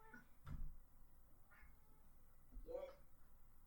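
A cat meows two or three times in a row, the calls drawn out and slightly rising, fairly quiet, with short pauses between them.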